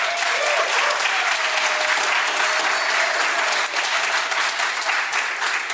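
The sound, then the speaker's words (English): A church crowd claps steadily for several seconds as a guest speaker comes up, a dense, even wash of many hands with no pauses, staying loud throughout and ending without any voices over it. “So if we could just have a round of applause”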